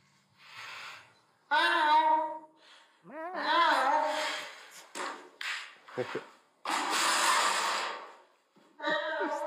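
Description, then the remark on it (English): A bigger cardboard box scrapes and rubs in uneven bursts as a male cat scoots it along while getting into it. Short tonal squeaks mix in, and a long, loud scrape comes near the end. “It's him, like, scooting the box over.”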